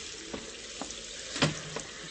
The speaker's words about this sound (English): This time it was night and rain, and the sounds of desolation that only the wind and the sea can shape.